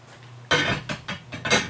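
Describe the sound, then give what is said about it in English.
Glass Pyrex dishes and a Pyrex lid being handled, with several bright clinks and scraping knocks arriving in an irregular cluster, moderately loud, with no talking. “This Pyrex lid goes with these Pyrex pieces here.”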